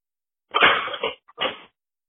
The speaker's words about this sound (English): I'm putting away my dishes right now. I don't know if you can hear that.